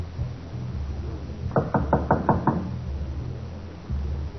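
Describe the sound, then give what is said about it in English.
Six quick, evenly spaced knocks on a wooden door, sharp, rapping in a steady rhythm over a low background hum, then quiet again. “We're going to knock on the door.”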